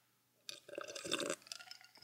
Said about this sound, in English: Sipping on my water.